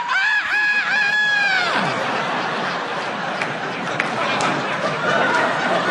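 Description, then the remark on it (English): A voice does a loud, drawn-out imitation of a rooster crowing, with a wavering pitch, followed by a crowd breaking into laughter and chatter. “And there was a rooster on the wing.”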